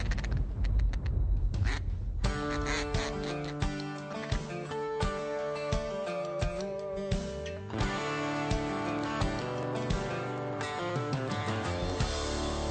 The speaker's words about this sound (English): Here come the ducks, hit the high ball.